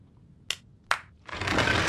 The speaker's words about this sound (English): See? The entrance opens with a clap! Alien technology. We call it the Clapatron.